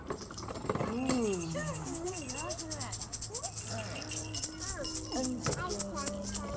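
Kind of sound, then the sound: household object, small bell ringing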